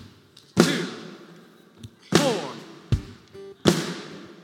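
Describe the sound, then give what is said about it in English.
An audience stomps and claps together on a steady beat along with a click, clapping on 2 and 4, each loud, sharp hit ringing out before the next, while a voice briefly counts along. “Y'all can stomp it.”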